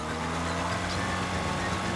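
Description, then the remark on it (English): A BMW's engine drones steadily with a low, rumbling hum and a hiss of road noise as the car comes in fast, holding an even loudness throughout with no voices. “Boss, we spotted his car. He's coming in fast.”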